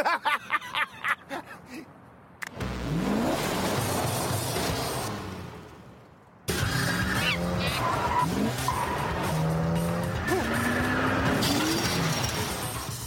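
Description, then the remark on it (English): A few sharp knocks, then a car roars off, its engine revving loudly through rising gear sweeps with a squeal of tires as it speeds away. The car is driven off by a monkey, the Trunk Monkey, recovering the car from a compound, in a Suburban Auto Group advert. No one speaks. “He came out of the trunk to drive.”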